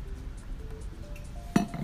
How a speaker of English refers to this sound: I'm drinking some water to wet my whistle.